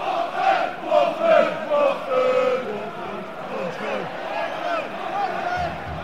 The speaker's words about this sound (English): We're at the Watford-Arsenal game. It's a late kick-off. Everybody's clapping. Don't know why. Everybody's been in the pub. Like, even the kids are drunk. We're here. There's a lot of chanting.